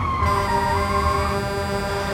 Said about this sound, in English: A truck coming the other way sounded its horn loudly.